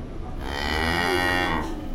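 A cow lets out one long, loud moo lasting about two seconds, a steady low, droning bellow with a slight rise in the middle. No voices are heard.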